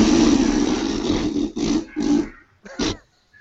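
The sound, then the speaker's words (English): Someone blows raspberries: a long, loud, sputtering lip buzz, then two shorter bursts and a final quick one after a brief pause, with no talking. “I have to say, that could have been raspberries or a really terrible fart.”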